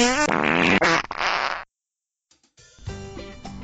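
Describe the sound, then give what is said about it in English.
Two loud, buzzy fart noises close up, the first long and sputtering, then a pause of silence before a second, tonal, wavering blast. No speech. “Now, listen to some fart noises.”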